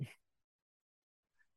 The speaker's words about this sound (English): The dogs are barking.